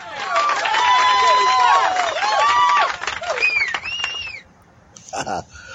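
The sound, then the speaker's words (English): A loud crowd cheers and whoops, many voices overlapping in rising and falling shouts for about four seconds, then the noise drops away abruptly and a brief voice follows. “My own little voiceover there through the crowd.”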